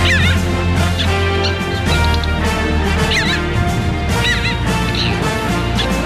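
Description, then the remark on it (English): Harsh, wailing seabird calls of a parasitic jaeger (also called Arctic skua or parasitic skua, Stercorarius parasiticus) ring out several times in quick succession, loud, over a steady roar of wind or surf. “The parasitic Jaeger, a.k.a. the Arctic skua, a.k.a. the parasitic skua, scientifically named Stercorarius parasiticus, and officially designated as today's Talkin' Birds featured feathered friend.”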